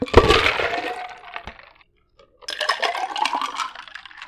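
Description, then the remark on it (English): A three-shot cocktail is poured back and forth between a large Panda Express cup and a pint glass twice, with a short pause between. Each pour is a splashy, rising gurgle with ice clattering, fairly loud, and no one speaks. “And actually, I have a cup that I'm going to kind of bartender it. And transfer.”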